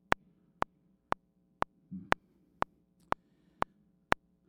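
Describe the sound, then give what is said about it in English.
A mobile phone buzzes in a steady series of short, sharp pulses, about two per second, fairly loud, with only a faint low murmur in the background. “I know I don't have a clock today, but my phone is buzzing.”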